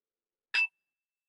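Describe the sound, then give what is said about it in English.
A single bright strike of a small bell, a quick metallic ding whose high tone lingers briefly before fading, heard alone against silence. “Normally, we focus on the sound, the object, the sound of the bell.”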